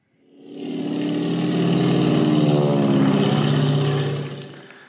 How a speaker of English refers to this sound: That is when I went down to Peachtree City and took my father and my father-in-law up in an open cockpit airplane. Oh, my goodness. For Father's Day.